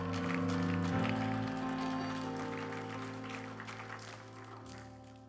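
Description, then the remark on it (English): An audience at a church service claps steadily as a crowd as a hand clap of praise after a prayer: a dense patter of many hands over sustained keyboard chords, loud at first and gradually tapering off. “Give him one more hand clap and shout of praise.”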